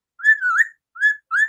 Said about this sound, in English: This is just the easiest way to get him to talk on cue. You're just going to keep whistling the whole time?